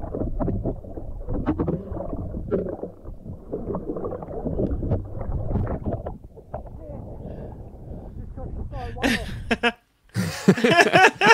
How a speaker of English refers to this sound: So he collides with a humpback whale. There's a still shot. I'm going to let it play because you'll see at the end. Listen right at the end here. Here it comes.